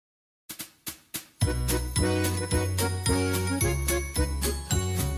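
Four sharp count-in taps lead into a bright, upbeat Christmas song with jingling bells over a bouncy, steady bass line, the full band playing loudly.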